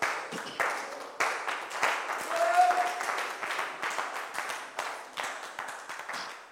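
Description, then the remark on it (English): A church audience, being seated after a prayer, claps together as a clap offering in a dense, steady burst of applause, many hands overlapping with sharp repeated attacks, rising slightly in the middle and continuing for several seconds, with faint voices mixed underneath. “You may be seated with a clap offering.”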